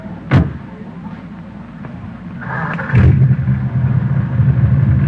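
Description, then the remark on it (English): An old car (jalopy) loaded with cargo is started with its keys at a pier: the engine cranks with a whirring starter, catches with a loud surge, then settles into a steady rumbling idle after an earlier sharp click. “Man, the engine sounds nice, doesn't it?”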